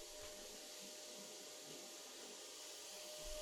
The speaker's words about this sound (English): I am hearing the vacuum cleaner again. Right when I'm starting to deliver the heavy speech, the vacuum cleaner starts up again. How much vacuuming can you do?